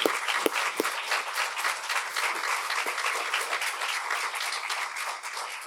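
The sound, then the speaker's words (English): An audience applauds for three individuals who shared their experiences, at the close of a session, for several seconds, a dense crackle of many hands clapping at once with a few sharper claps standing out at the start, no voices over it. “So if you wouldn't mind joining with a round of applause.”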